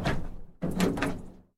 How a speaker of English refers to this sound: said as he opened a rusty door.